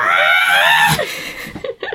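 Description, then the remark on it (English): A voice mimics the scream of the robot droid R2-D2: a shrill, high-pitched warbling wail held for about a second, dropping off sharply, followed by a few short breathy vocal bursts. “R2-D2 scream.”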